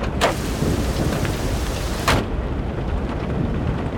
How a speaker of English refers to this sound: We pulled up, torrential winds buffeting the car, rain flooding the streets.